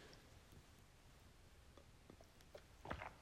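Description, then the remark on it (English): Quiet sipping and swallowing of water: a few small wet mouth clicks, then a brief louder slurp and gulp near the end, with no talking. “Before I get started, let me take a sip of water, because when I'm talking really fast, my throat gets dry.”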